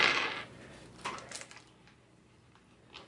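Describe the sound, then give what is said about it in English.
Dice clatter and tumble on a hard surface in a secret roll: a sharp initial rattle, then a few scattered lighter clicks as they settle, fairly quiet, with no talking. “Secret dice. That's not fair.”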